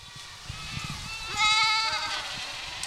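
Dozens of Spanish goats, grazing on non-native plants, bleat in a field of waist-high vegetation in the Mark Twain National Forest in Missouri's Ozarks; one clear wavering bleat rises above the rest around the middle, with fainter bleats and soft outdoor rustling throughout.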